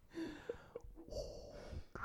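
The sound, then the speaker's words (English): A voice imitates the slow, hissing breath of a mechanical respirator, a raspy inhale rising to a brief airy exhale, with no talking. “If I just do Vader breathing while you're running”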